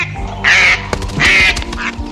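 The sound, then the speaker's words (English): Two wild ducks that landed in a pool during mating season quack loudly, three harsh, raspy calls in quick succession, the last one shorter, with no talking. “A couple months before all this, these two wild ducks landed in my pool.”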